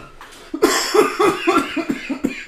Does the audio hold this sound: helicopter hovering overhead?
no